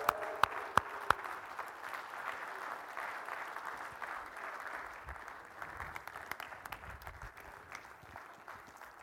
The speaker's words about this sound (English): And now, let's welcome our children. Welcome our children. Can you just hoot and holler and cheer for them as they come in this morning?